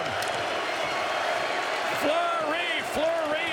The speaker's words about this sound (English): Down to 20 left. And listen to the crowd, Fleury, they're chanting. Fleury, Fleury, it sounds like.